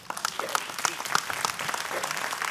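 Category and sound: crowd, audience clapping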